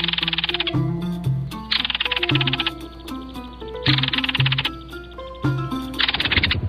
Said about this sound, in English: The one we just heard is today's featured feathered friend, the belted kingfisher, which can be seen year-round pretty much all over the United States and in summer across Canada and Alaska.